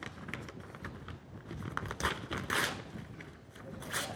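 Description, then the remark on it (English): A sheet of 8.5 by 11 white paper being torn into little pieces: a run of dry, crackly rips and crinkles, with several sharper, louder tears standing out amid steady rustling. “Tore it in little pieces.”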